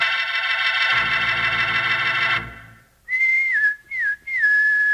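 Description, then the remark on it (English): A steady, reedy chord fades out, then a clear, loud whistled call follows in three short phrases, each sliding up and down in pitch, with brief pauses between. “Sounds like a pal of yours whistling for you, doesn't it?”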